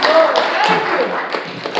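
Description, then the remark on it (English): Many hands clap together in a hand clap of praise to the Lord: a dense, steady burst of applause lasting a couple of seconds, a continuous crackle of overlapping claps with voices mixed faintly underneath. “We give the Lord a hand clap of praise today.”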